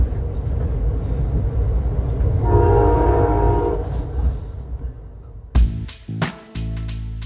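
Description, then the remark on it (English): A train rumbles steadily along the tracks past the California coastline on a morning, with a horn sounding in the middle and clattering, whooshing bursts near the end as cars rush past. “As I watch the California coastline pass by from the comfort of my train seat, remembering Bell's comments made the million-dollar views of the water on a gorgeous morning a lot more unsettling.”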